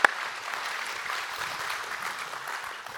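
An audience applauds steadily for about three seconds, a dense wash of many hands clapping at an even, moderate loudness with no voices over it.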